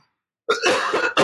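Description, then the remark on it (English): A short, harsh cough with throaty clearing, fairly loud, arriving after a brief silence and followed by a second quick burst. “I'm telling you, I'm going to be coughing the whole show.”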